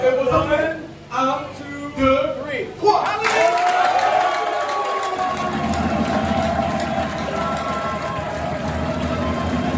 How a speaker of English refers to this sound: He says, clap your hands, all you people, and shout unto God with a voice of triumph. So when I count to three, we're going to clap our hands, and we're going to shout unto God with a voice of triumph. Are you ready?